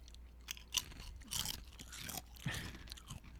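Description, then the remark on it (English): Crisp, crackly crunching of Lay's kettle-style potato chips being chewed, several loud bursts of snapping bites spaced irregularly over a few seconds, with no talking. “These are, that's Lay's kettle chips.”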